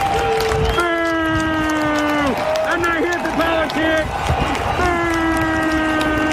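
A stadium crowd at a Chiefs vs. Texans football game boos during a pre-game moment of unity involving players and coaches from both teams, in long, droning, low-pitched waves, swelling loudly, breaking into choppier jeers and shouts midway, then settling back into a sustained chorus of boos.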